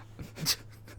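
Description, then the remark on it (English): A handful of soft keyboard keystrokes tap out unevenly over about a second, quiet, with one slightly sharper click in the middle and no talking, as someone types a message giving an instruction to reconnect. “That's me typing to Jake to give him an instruction to reconnect”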